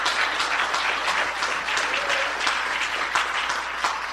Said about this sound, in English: Let us give God a hand clap of praise on this morning as we get started.